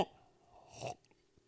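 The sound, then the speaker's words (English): A quick slurping sip from a drink, followed by a faint swallow and soft mouth sounds, quiet and alone with no talking. “Oh, speaking of which, hold on, let me get a little sip drink.”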